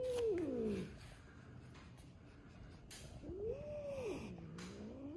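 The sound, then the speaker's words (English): A female cat lets out two drawn-out, wavering meows, one at the start and another a few seconds later, with a quiet pause between them and no talking. “That's a good kitty. It's okay. Come closer.”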